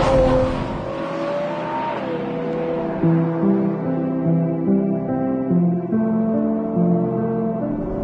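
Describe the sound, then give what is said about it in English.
The V12 engine of a Ferrari 812 GTS sports car revs up loudly, its pitch climbing over the first couple of seconds, then settling into a rich, steady, multi-toned drone that continues throughout with no talking. “That glorious V12 symphony just got even better”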